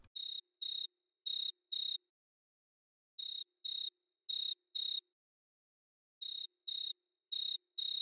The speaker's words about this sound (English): The sound bits in the intro, the news segment, and the bird chirping were all taken from freesound.org.